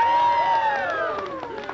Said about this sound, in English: A cheer went up from the entire crew.